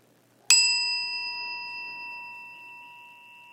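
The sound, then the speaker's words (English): A single bell is struck once, giving a clear, bright ding that rings on with a long, slowly fading sustain over a quiet background. “We ring this bell in solidarity with people around the world, especially immigrants to America, who are feeling particularly vulnerable at this time.”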